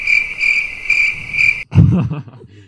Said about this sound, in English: The crickets were sounding right there.